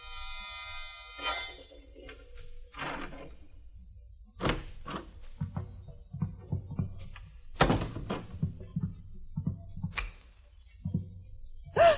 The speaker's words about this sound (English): The sound of a key in the lock of the door.